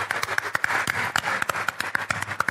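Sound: audience round of applause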